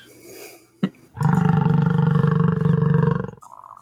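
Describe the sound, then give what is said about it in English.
A buffalo lets out one long, deep bellow, a loud, steady, rumbling roar lasting over two seconds, preceded by a brief sharp knock and no talking. “It's a buffalo.”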